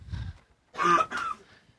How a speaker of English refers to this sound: while she's coughing instead of talking.